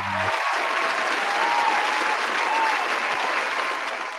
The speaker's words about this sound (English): So 6 years, man, I really got to give us a round of applause for that right there.